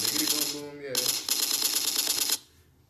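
A loud, harsh burst of rapid-fire gunshot sound effects rattles on for about two seconds, breaking briefly once before stopping abruptly, with a voice faintly audible underneath at the start.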